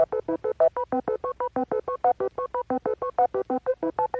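A rapid run of electronic beep boop tones, about two dozen short pulses hopping between pitches in a steady rhythm, like touch-tone dialing, loud and alone with no talking.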